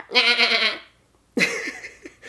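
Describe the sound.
A person imitates a goat with a loud, wavering bleat, followed after a short pause by a second, rougher bleating call broken into a few pulses.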